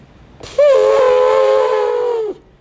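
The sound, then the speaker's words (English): A voice lets out one loud, sustained trumpeting blare, imitating an elephant. It wavers briefly at the start, holds steady for almost two seconds, then cuts off abruptly. “Like an elephant.”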